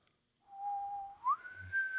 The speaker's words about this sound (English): I can't whistle tonight. Yeah, I can't. My throat's dry. You don't need your throat to whistle.